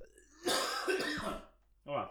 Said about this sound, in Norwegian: Jeg skal lige hoste